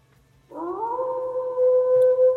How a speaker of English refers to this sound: Got that wolf sound.